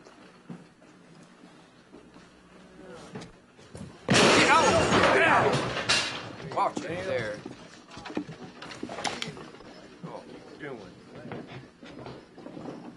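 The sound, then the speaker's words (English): A sudden, loud smack of a punch to the face that breaks a nose, followed by glass shattering and clattering for a couple of seconds, then voices talking and exclaiming in the quieter aftermath. “Now then, if I could have a fresh glass, please. You just broke my nose, you old son of a”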